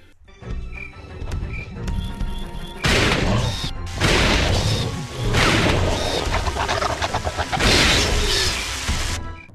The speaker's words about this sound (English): I want to see if you can guess from the slobbering sounds and gunfire what this might be.